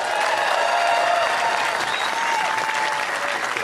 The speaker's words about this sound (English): And there was a thunderous applause, a standing ovation, and folks, it went on and on and on. But as the applause began to subside then, Ambassador Friedman continued.